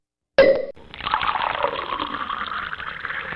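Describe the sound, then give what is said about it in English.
A sharp glassy clink rings out, then a steady fizzing pour of champagne into a glass carries on clear for a few seconds, with no one speaking. “Tim Tebow pouring champagne in his Florida boxers”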